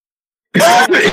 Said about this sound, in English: He's coughing like crazy right now.